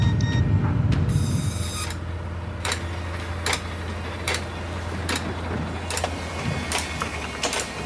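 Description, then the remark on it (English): A fax machine aboard the ship Pong Su prints incoming fax messages from the owner's head office in North Korea, its steady low motor hum running under a regular series of sharp mechanical clicks that come roughly once a second, with a brief whirring burst at the start. “As the Pong Su steamed towards Australia, she received some fax messages from her owner's head office in North Korea.”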